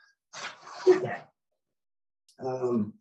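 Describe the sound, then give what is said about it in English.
A puppy looking out a window barks twice with a pause of silence between: first a rough, noisy bark, then a higher, more tonal yip, both moderately loud. “Sorry, my puppy dog is looking out the window barking.”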